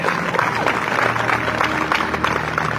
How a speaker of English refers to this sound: Come on and give my hand clap of praise.